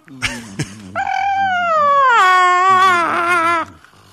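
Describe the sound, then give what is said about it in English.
A husky that looks like a wolverine lets out a long, wavering howl-like whine, rising and bending in pitch for nearly three seconds after two short yelps, loud and alone with no talking. “And this is the dog noise that Brady was trying to. This is a husky that looks like a wolverine.”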